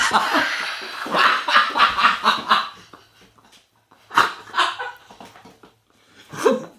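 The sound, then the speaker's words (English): A dog makes eager, whiny yips and grumbles in quick bursts, wanting cookies: first a rapid run of them, then a pause, a couple more, and one last short cry. “The dog has gone to new heights. Right. To get those.”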